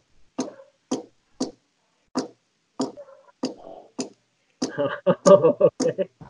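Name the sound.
clock ticking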